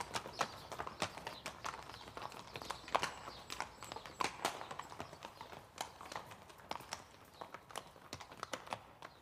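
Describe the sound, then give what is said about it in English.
A small horse's hooves clip-clop on a hard surface in a quick, uneven rhythm of sharp knocks, the beats growing slightly sparser toward the end as the horse slows to a stop, fairly quiet and alone with no talking. “Your little horse is stopping.”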